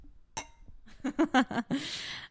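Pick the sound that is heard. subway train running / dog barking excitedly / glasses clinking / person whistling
glasses clinking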